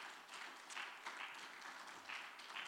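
A crowd of people clapping their hands together in steady, dense applause that holds at an even level for a few seconds, with no voices.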